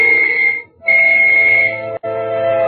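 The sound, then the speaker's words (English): A loud, steady whistle sounds in two long blasts separated by a short pause, with a brief flicker near the end, signalling all clear before a blast. No one speaks. “I waited for the whistle to signal all clear.”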